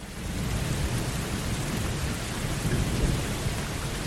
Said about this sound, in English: Good rain, Ollie. We needed it.